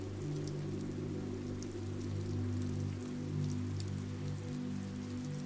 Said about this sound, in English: Enjoying the sounds of rain and the softness of this time.